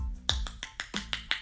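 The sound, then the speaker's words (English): A run of about seven sharp tongue pops at a fast, slightly uneven pace, mimicking a round of applause. Each pop is a bright, crisp click, with no talking. “It was me popping my tongue.”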